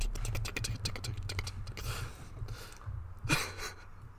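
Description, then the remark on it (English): A rapid run of light keyboard clicks, typing at a steady pace over a low background hum, slowing and thinning out before a brief louder rustle near the end. “Get back to typing.”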